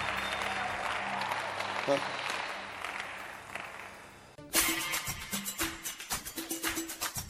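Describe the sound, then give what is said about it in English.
A crowd claps steadily and densely, a continuous wash of applause that cuts off abruptly, followed by a man's voice speaking over a cheerful music track. “I know your clapping is, let me be careful lest I blaspheme.”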